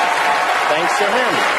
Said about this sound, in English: Massive thundering applause.